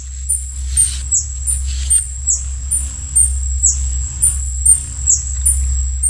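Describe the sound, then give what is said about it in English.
A hummingbird's wings beat in a steady, low, insect-like buzz throughout, while thin, high-pitched chirps repeat in a quick, regular pattern above it. No one speaks. “It's a hummingbird.”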